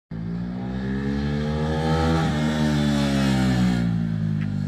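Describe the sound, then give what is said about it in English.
A motorcycle engine runs loud for several seconds, its steady throaty drone swelling slightly in pitch midway as it revs, with no voices present. “Sorry there was no post on Friday, but I got the delivery of a motorcycle and I had to like put it together.”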